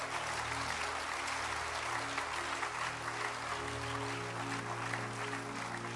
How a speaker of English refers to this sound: If you are clapping there, you can clap well.